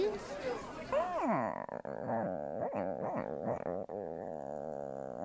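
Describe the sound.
A person's voice makes a gruff, dog-like growl, starting with a few swooping vocal tones and then settling into a rough, rumbling rasp that lasts several seconds.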